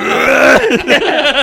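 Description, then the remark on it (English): A loud burp drawn out for about half a second, then breaking into a few short, choppy vocal sputters that sound like giggling. “That burp, like, in the middle of your tongue.”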